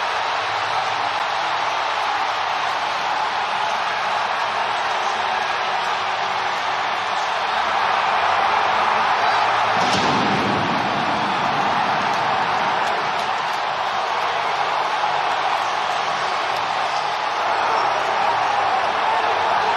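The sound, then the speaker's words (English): A baseball stadium crowd roars and cheers after Yordan Alvarez's walk-off home run to deep right field wins game one for the Astros, in a loud, continuous wash of noise for the whole stretch, swelling slightly midway and never letting up. No clear voices stand out. “The crowd do the rest.”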